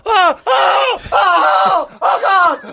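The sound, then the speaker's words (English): A voice imitates a person screaming during a night terror: three loud, strained bursts separated by brief gasping pauses, harsh with wavering pitch. “Oh, did I tell you to get night terror sometimes? Start screaming at the top of your lungs.”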